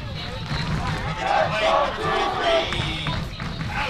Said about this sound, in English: you can hear the Rabbits fans getting rowdy.